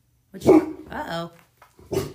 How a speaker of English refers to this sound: That's Basil, my puppy. She's a big guard dog, so she's keeping me safe.